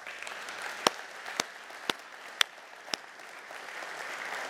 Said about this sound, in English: Gentlemen, give these ladies a round of applause.